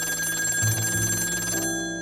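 telephone ringing

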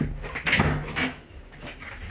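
door being shut

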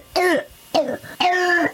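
child's barking croup cough

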